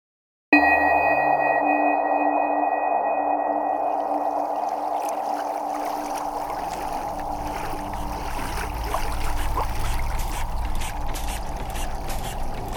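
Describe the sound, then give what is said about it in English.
An old boat engine with large pipes, valves and wheels starts up abruptly and runs with a steady, loud droning hum and whining tones, with a churning wash of water underneath, continuing without pause and no voices. “he's tending to the boat's noisy engine. A strange engine, with large pipes and valves and wheels, like something out of a history museum.”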